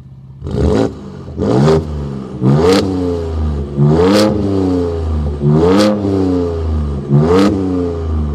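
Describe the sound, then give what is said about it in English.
A Ford Performance truck engine in Baja drive mode revs hard about six times in a steady rhythm, each blip rising sharply then dropping back to a deep idle rumble, loud with no talking. “All right, so this is what the Baja mode sounds like.”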